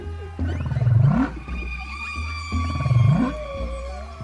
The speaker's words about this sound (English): … had never heard whale songs before. But he went to a lecture by biologist Dr. Roger Payne in 1968, where Payne played his recordings of humpback whales.